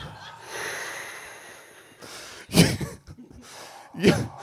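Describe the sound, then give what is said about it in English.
Heavy, forceful breathing: a long drawn-in breath followed by two loud, snorting exhales, spaced apart with quiet between them and no talking. “Yoga instructors across America have discovered the power of loud, heavy breathing.”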